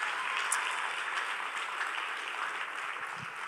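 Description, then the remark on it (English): A crowd applauds steadily, a dense wash of many hands clapping at an even, sustained level with no voices standing out. “will you guys give them a big old clap, big old thank you? Come on, give it up.”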